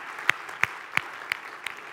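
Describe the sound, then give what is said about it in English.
Congregation applause at City Life church, celebrating a property being gifted to it by North Riverside Baptist Church, comes through as a steady, rhythmic run of about five sharp claps, evenly spaced and fairly soft, with no voices over it. “You can clap.”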